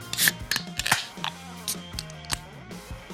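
Beer cans cracked open: a series of sharp metallic clicks and snaps at uneven intervals, with short fizzing hisses, over a faint low background hum and no talking.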